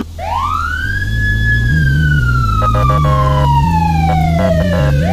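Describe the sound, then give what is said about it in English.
An emergency vehicle's rumbler siren in a video game throbs with a deep, loud low-frequency drone beneath a rising-and-falling wail, with stuttering electronic pulses near the end. No one speaks. “They have the rumbler siren.”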